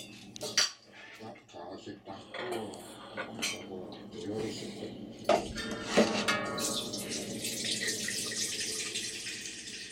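A washing machine runs with clattering knocks and clinks early on, then a steady rush of water pouring in fills the last few seconds, fairly loud and continuous.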